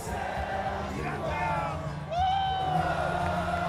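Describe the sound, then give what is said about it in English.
A large wrestling crowd at an AEW Dynamite event held on a cruise sings along to a wrestler's theme song while the music plays, many voices blending into sustained, wavering notes over a steady, dense backdrop, holding fairly loud throughout. “You can hear the crowd singing along the lyrics to his theme song.”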